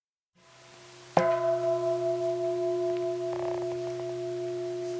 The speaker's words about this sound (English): That was a bell for those of you who are mastering not paying attention.